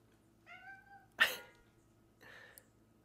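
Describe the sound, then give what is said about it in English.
A male cat meows, a short, tonal call followed by a sudden sharp burst and then a softer, breathier second cry against a quiet background hum. “Yes, kitty boy.”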